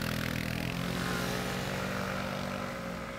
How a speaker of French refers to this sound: Je me suis inscrit dans cette association pour pouvoir militer, rajouter ma voix en fait à ceux qui n'en peuvent plus du bruit de scooter ou du bruit de voiture dans Paris.